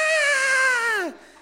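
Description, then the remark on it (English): A voice imitates a shrill, high-pitched yell: one loud sustained "ah" lasting about a second, holding steady before its pitch drops sharply as it cuts off. “he yells in the highest pitch you can yell.”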